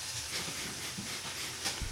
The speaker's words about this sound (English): You hear that frying in the background?